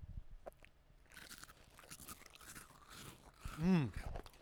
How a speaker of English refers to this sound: I'm opening up some graham crackers, some honey-flavored graham crackers.